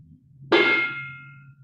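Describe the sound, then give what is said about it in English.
A large meditation bell is struck once with a sharp, clipped hit, giving a bright metallic clang that rings briefly and fades quickly, with little lingering resonance. “Give the big bell a sharp chunk.”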